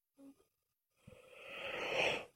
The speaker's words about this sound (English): You're yawning a lot. You should not stay up very late. I'm not going to. Because we were up very early and you've had a long, long day.